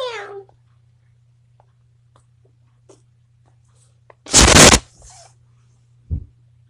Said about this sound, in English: Hello, kitty. Meow.